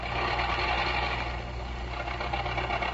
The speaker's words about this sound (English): don't look now, but either your jalopy needs gas or it wants to be burped. Yeah, it needs gas, all right. Gosh, I can't understand it. I put in a gallon just last week.